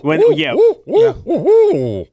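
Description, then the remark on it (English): A person loudly imitates an owl to call owls in, giving four quick hooting calls in two bursts, each hoot swooping up and down in pitch, with no other sounds around. “I love hearing owls at night. Oh, that's so cool. I call them in.”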